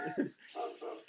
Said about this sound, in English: And the dog is now out. He's going nuts.